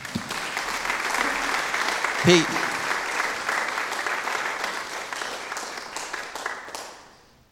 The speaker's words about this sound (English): Round of applause.